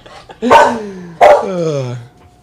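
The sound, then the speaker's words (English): A dog, Bailey, gives two loud, drawn-out barks back to back on the command to speak, each one tonal and sliding downward in pitch, with no voices over them. “Can you speak? Speak. Speak.”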